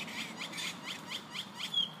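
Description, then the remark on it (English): Birds calling noisily, a quick run of about seven shrill, high chirps in a steady rhythm, fairly loud, with no talking over them. “Gosh, those birds are... causing a ruckus.”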